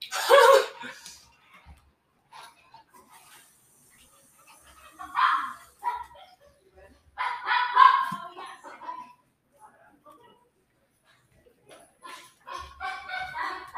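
Dogs bark in several loud, scattered bursts separated by quiet gaps, with a livelier flurry of barks near the end.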